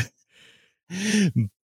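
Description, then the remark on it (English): A husky cough or throat-clear: a soft breathy intake, then a rough voiced burst that drops in pitch, followed by a short second hack. No one speaks. “I heard that cough there.”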